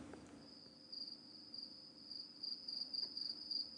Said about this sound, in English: Sounds like the crickets are voting yes.